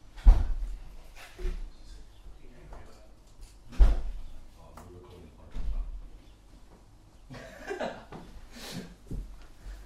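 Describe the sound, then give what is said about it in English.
A door is opened and shut somewhere in the house as someone answers it for a parcel delivery, giving a few dull thumps and clunks spread over several seconds, with faint muffled voices in the background. “So … has gone to answer the door.”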